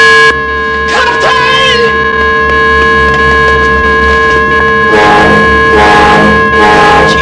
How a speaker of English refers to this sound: Helm, bridge. Right full rudder. All ahead full. Sound the danger signal.